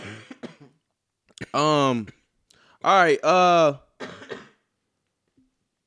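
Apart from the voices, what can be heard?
coughing and throat clearing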